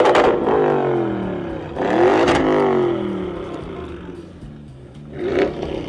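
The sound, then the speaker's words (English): A car engine revs loudly in repeated surges, its pitch climbing and then sliding down, with a third burst near the end. “A man in Washington, no, it wasn't me, had been arrested after he allegedly shot his neighbor dead for loudly revving a car's engine outside his home.”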